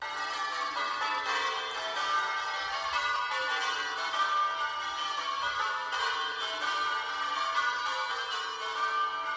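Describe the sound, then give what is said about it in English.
Every bell in a house rings together in a dense, continuous clangor, overlapping tones sustained at steady loudness throughout with no pauses and no voices. “It swung so softly in the outset that it scarcely made a sound, but soon it rang out loudly. And so did every bell in the house.”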